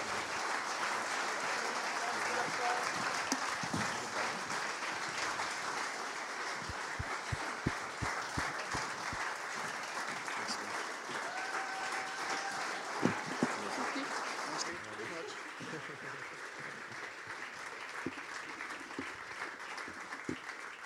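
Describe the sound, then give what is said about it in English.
A standing church audience applauds steadily for about twenty seconds to honour a group of people, on behalf of the family: a dense, even wash of clapping that eases slightly toward the end, with a brief high cheer or whistle midway. “Why don't we give them a round of applause on behalf of the family?”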